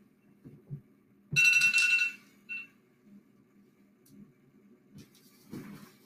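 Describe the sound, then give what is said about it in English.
A phone alarm marking 8 a.m. rings in a loud, bright electronic tone lasting under a second, followed by a short faint echo of the chime, over low rumbling handling noise and soft thumps. “So that alarm tells me that it's 8 a.m.”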